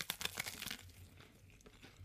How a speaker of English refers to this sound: So I'm going to take a bite out of this okay. very non-chickeny chicken. And I'm going to bite whatever chicken.